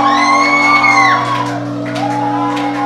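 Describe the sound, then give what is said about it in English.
A crowd shouts and whoops loudly and continuously to give God a shout, voices overlapping in a sustained roar with high rising cries over a steady low hum, unbroken for the whole stretch. “Sustain the shout. Give God a shout.”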